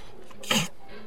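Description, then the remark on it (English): A man gives a single short, small cough, a brief throaty burst that rises quickly and fades within a fraction of a second over a quiet background. “He's just a little cough there.”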